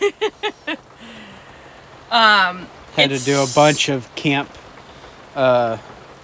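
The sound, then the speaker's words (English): Rain falls steadily outside a camper van, a soft continuous hiss running beneath a person talking nearby in short bursts. “So if you guys hear the rain, I'm sorry.”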